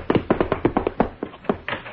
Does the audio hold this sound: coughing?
no